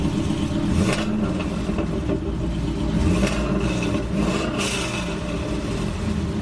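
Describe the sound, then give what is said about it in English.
The engine of the bandit car revs loudly and steadily, its pitch rising and falling as it drives past, with a few sharper bursts of acceleration and no voices. “Wait, isn't that John in the bandit car?”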